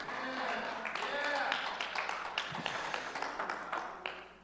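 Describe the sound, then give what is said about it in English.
An audience listening to a sermon claps in a dense, irregular patter mixed with murmuring and raised voices from the crowd, holding steady at moderate loudness before tapering off at the end. “See, the bummer is in this room, I mean, I know some of you are happy and clapping, but if only we knew the seriousness of sin.”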